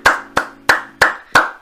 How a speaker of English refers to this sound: Congratulations, Miss Lana Rhodes. Let's give a clap for Lana Rhodes.